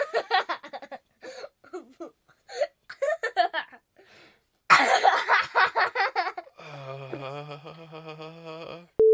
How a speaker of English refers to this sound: And you cough.